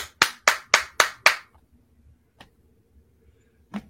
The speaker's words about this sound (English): Jason Garrett, he's out there clapping. What the hell are you clapping for? You should be capping. Not clapping, capping.